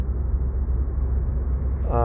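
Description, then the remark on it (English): A steady, muffled low rumble of a car slowly accelerating on a highway heading into Toronto, heard from inside the vehicle, with a voice starting to speak just at the end. “Oh, my car accelerates so slow.”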